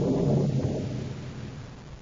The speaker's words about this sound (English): I thought I heard a roar like spaceship rockets. Just distant thunder.